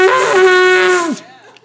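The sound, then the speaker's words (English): A single loud, buzzy shofar blast holds one steady pitch for about a second, then sags downward and breaks off, leaving only faint rustling afterward. “Because I'm going to try to blow this, and it's probably going to kill me.”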